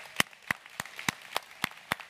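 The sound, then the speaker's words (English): Steady, rhythmic hand clapping at a church service welcoming first-time guests: about seven sharp, crisp claps at an even pace, each ringing briefly, with no voices over them. “Can we give our first-time guests a hand clap?”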